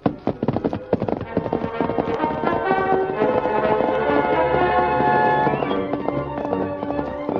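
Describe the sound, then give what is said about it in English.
The hooves of Silver, the Lone Ranger's great horse, clip-clop in a steady, quick rhythm as he sets out in the darkness, fairly loud, blended with a swelling tonal backdrop that sounds like dramatic music. “Leaving Tonto on guard, the Lone Ranger set out in the darkness on his great horse, Silver.”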